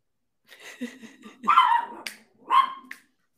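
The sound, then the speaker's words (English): Two loud barks from a dog, the first longer and rougher, the second shorter, with some lower whining or muffled vocal noise beforehand and no talking. “Your dogs always, they feel very left out when we start talking.”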